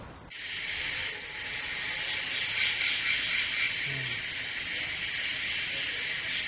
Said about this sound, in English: Those are the insects, huh? Cicadas, yeah. Cicadas, yeah.